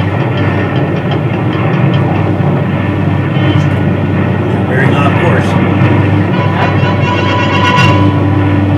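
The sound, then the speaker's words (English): Starship engines roar as the ship accelerates, in a loud, continuous drone, a deep low hum layered with steady tonal whines and rattling texture, while a man speaks briefly over the top. “Speed is increased. Stop all engines.”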